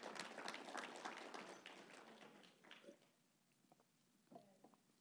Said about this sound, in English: Let's clap it up as we go into our next point.